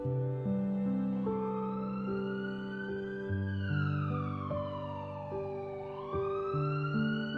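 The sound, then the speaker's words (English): An ambulance siren wails as the ambulance passes by, its pitch slowly rising and falling in long sweeps, loud and steady throughout, over a backdrop of sustained musical tones. “Every time an ambulance passes by, my heart sinks a bit, throws a fit, screams inside and cries out a big why.”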